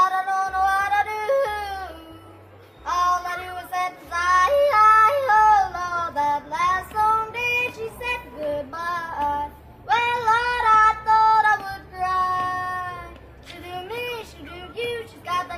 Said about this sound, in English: Is there anything that shouts America more than a kid wearing oversized cowboy boots yodeling in a Walmart?